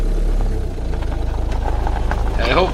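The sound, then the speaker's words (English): A car engine idles with a steady low rumble and faint vibration throughout, in Howard's car with the top down, while a brief voice-like sound rises over it near the end. “I hope Howard doesn't mind if I smoke in his car.”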